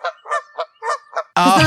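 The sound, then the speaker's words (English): A Canada goose honks five times in quick, uneven succession, then lets out a much louder, harsh, drawn-out honk. No one speaks. “I'll be a Canada goose.”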